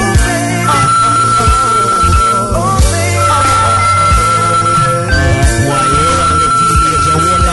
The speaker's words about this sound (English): the phone is ringing. It might be somebody calling all the way from Kenya.